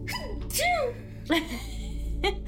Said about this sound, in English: There go my cute sneeze again.